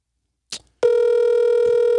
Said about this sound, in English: I'm calling him right now. Is it a single or an album? We just want to know. He not going to answer.